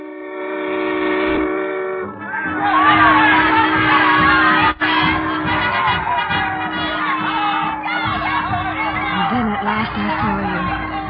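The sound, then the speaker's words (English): A large crowd cheers and shouts on a pier as a regiment comes home, a loud, dense roar that fills the scene, opening with a steady horn-like blast before the excited clamour swells and carries on. “Through that crowd, I'll never know.”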